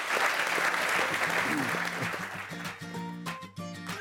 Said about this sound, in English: All right, that ends our lightning round. Let's give a round of applause for them for getting through the gauntlet.